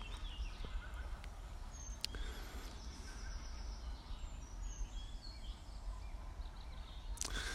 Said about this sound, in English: I'm taking a seat next to the lake. Opposite some islands. There's loads of birds here.